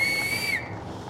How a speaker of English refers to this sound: Bub ignored him and whistled with 2 fingers.